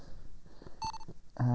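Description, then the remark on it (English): A short electronic beep with a steady, fairly high tone rises out of faint background murmur, followed moments later by a louder, lower buzzing tone that holds to the end. “Let's see how well this works, because clearly, that's a beep.”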